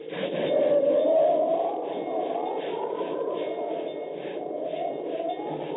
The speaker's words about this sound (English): Precisely speaking, in the Wasatch Mountains, advancing by train toward the perilous pass of Medicine Bow. To thicken the plot a bit for you, if possible, it's coming up for a blizzard.